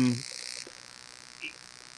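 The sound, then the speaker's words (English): A harsh electrical buzz on the line crackles loudly for about half a second, then cuts off, leaving a faint hiss with one brief soft chirp. No one speaks. “And I hear the buzz again. Yeah, here comes the buzz.”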